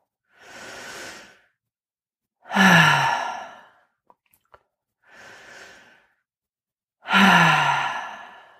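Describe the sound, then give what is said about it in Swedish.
Two slow deep-breathing cycles, filling the belly and then the chest, each a soft airy inhale followed by a louder, longer exhale through the mouth with a slightly voiced, sigh-like tone. Brief quiet pauses separate the breaths. “Om vi kan så andas vi in genom näsan och släpper ut genom munnen.”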